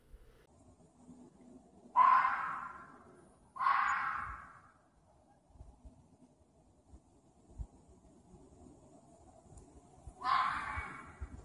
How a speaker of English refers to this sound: Have you ever heard what a fox sounds like? It's terrifying. If I heard that in the middle of pitch black woods, I would probably start moving quickly in fear of a chupacabra or a Jersey devil. Here's a clip of a fox screech just to demonstrate.